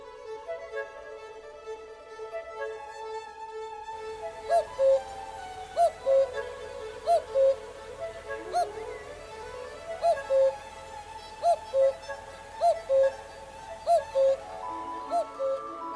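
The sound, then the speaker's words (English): Soft sustained orchestral chords, then many different instruments of the orchestra take turns playing the iconic repeated two-note cuckoo bird call in Respighi's adaptation, recurring about every second over the held harmony, clear and moderately loud, with no voices. “He gives the iconic cuckoo bird call to many different instruments of the orchestra. We're really in a forest full of cuckoos.”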